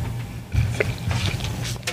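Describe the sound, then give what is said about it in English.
Water pours steadily into a glass for about two seconds, a gurgling fill with a low rumbling undertone and brief brighter splashes partway through; no one speaks. “Yeah, that's water. That's water.”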